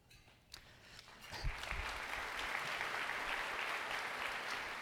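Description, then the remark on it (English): Applause from the audience at the Cleveland Metropolitan School District's State of the Schools address, as the CEO mentions leaving, starts with a few scattered claps, then swells within about a second into steady, sustained clapping that holds at a fairly even level to the end. “I knew somebody would applaud when I said I was leaving.”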